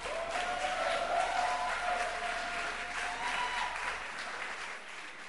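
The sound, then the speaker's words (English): An audience at an evening celebration service of First Love Oyibi claps their hands together in sustained, dense applause, a steady wash of many overlapping claps with faint voices mixed in, tapering slightly toward the end. “You may be seated this evening with a hand clap.”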